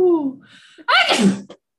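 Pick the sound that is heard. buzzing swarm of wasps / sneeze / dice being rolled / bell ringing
sneeze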